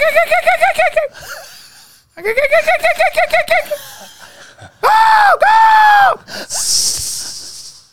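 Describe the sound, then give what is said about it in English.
A person imitates a jackal call: two bursts of rapid, high-pitched yipping, then two long wavering howls, ending in a breathy, hissing exhale. Loud, with no talking over it. “Why do you do a jackal sound effect? I'd love to hear that.”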